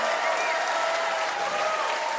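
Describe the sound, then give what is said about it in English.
Sustained audience applause for the women singers who sang all night: dense, steady clapping fills the whole stretch at an even loudness, with a faint tonal whistle-like streak running through the crowd noise and no speech. “Give them a huge round of applause for singing all night long.”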